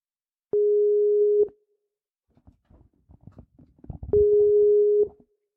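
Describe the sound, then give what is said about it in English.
A Skype incoming call tone as Go Fish Dan calls: two long, steady electronic beeps, each about a second, fairly loud, with soft clattering and shuffling noises in the gap between them. “And Go Fish Dan called me today on Skype, and he wanted to talk about that.”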